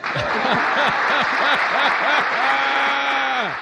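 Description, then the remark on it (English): Steady, dense audience applause fills the whole moment, a crowd clapping loudly together while a voice speaks over the noise. “I think that's an applause line.”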